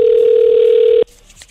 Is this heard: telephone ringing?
yes